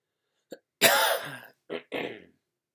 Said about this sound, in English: Sorry for all his coughing. I don't know what the hell's going on.